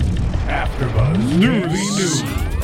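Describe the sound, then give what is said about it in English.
A news ticker sound effect introducing AfterBuzz TV's news and gossip segment: busy mechanical clicking and whirring under steeply rising, overlapping electronic sweeps that climb in pitch, all held at a steady, fairly loud level for under three seconds. “You haven't heard that? That's the like, news ticker.”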